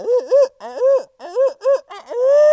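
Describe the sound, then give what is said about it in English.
A loud imitated owl hoot: a rhythmic run of about five quick, rising-and-falling hooting notes, then a longer drawn-out final hoot, with no talking. “He did gobble at that owl hoot.”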